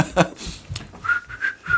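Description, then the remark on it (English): A person whistles a short three-note tune, each note held briefly at a steady pitch, clear, after a brief burst of other noise at the start. “Your dad whistles while he shoplifts so that he doesn't look suspicious.”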